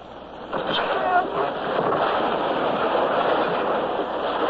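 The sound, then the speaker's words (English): An ocean wave crashes in a loud, hissing rush of surf that swells after a moment and then holds as a steady, churning roar of spray and foam for several seconds. “The wave came. And in we went through a welter of spray and foam.”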